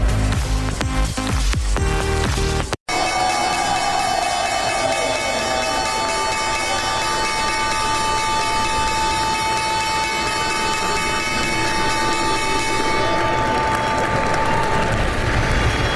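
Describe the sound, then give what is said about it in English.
The New York Stock Exchange opening bell rings loudly and continuously for over ten seconds, a sustained metallic clang with steady overtones, while a crowd claps and cheers beneath it. “We are live from the New York Stock Exchange, and that was the opening bell, as expected.”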